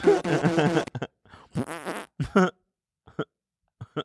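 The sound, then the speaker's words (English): A string of loud fart noises: a long buzzy rasp, then a second drawn-out blast, followed by several short sputtering pops spaced out across the few seconds. “The 600 farts, man.”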